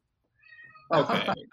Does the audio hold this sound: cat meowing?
yes